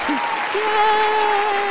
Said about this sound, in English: Where's the clapping? Nice. It's a different clap this week. Yeah. That ended so quickly.